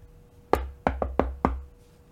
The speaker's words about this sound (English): Okay, y'all hear knocking at the other side of the door. It's incredibly faint. Like, you have to, it takes you a moment to think, did you hear something? And you leaning in.